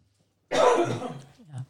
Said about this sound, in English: When I'm sitting over sipping water, I'm trying to keep from coughing on the microphone.